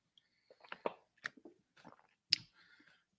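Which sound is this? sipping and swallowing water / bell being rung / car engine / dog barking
sipping and swallowing water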